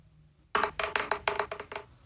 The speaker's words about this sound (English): Roll 2d12 for me, please. 2d12. Here we go.